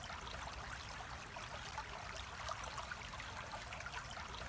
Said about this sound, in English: And the sound of the blue sea. You can visualize it, the blue sky without clouds, where they merge on the horizon.